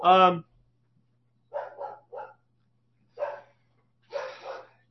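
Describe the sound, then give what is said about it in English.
Dogs bark: one loud, sharp bark followed by several quieter, shorter barks and yips in irregular bursts with pauses between them. “Dogs got to lose their mind.”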